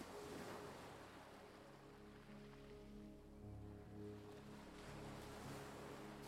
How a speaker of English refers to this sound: Let the sound of the waves take all of your worries and distractions away. Allow yourself to be completely present in the moment, soaking up the peacefulness and serenity of the ocean.